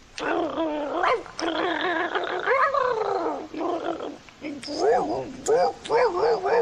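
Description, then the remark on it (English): A person vocally imitates a pack of about five dogs, producing a continuous run of overlapping barks, yips and growly howls for several seconds, loud, with wavering pitch. “Ralph took off and met up with about 5 other dogs. And I can't do 5 dogs. I can. Okay, do it.”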